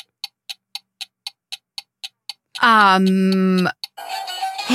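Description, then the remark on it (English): A game-timer clock in a spoken movie-naming game ticks quickly and evenly, about ten crisp ticks, then a loud, droning buzzer sounds for about a second, followed by a brief burst of noisy sound. “The clock has struck.”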